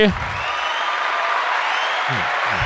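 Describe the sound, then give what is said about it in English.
Steady audience applause, a dense wash of many hands clapping at an even loudness throughout, with brief bits of a man's voice at the start and end. “I live for the applause.”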